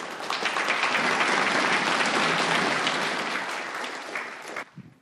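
An audience at an AA meeting claps for a speaker who has just finished, in a dense, sustained wash of applause that holds strong for several seconds, then thins out and fades near the end.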